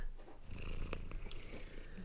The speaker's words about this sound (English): did I just hear a cat purr? I've been hearing Mark's cat purring for like the last like 10 minutes now.